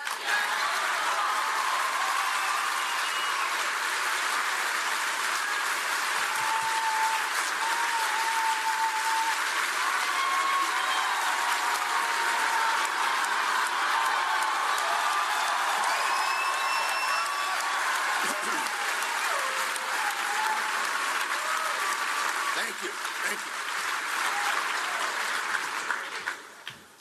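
A large audience applauds steadily for nearly half a minute, a dense, continuous wash of clapping with scattered whoops and whistles rising above it before it tapers off at the end.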